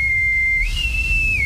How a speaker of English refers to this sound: I would be out there with the whistle.